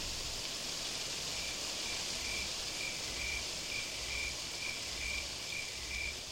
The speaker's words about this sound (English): We live on a rural country lane, and the start of autumn has the nights growing cool. I open the windows and a smoky breeze fills the room, the last hum of crickets in the distance, rustling trees.